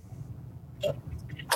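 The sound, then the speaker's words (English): A steady low engine rumble from inside a car driving through heavy traffic, broken by a couple of brief sharp noises and faint tones of surrounding traffic, with no one talking. “Sorry, I'm driving like really heavy fucking traffic.”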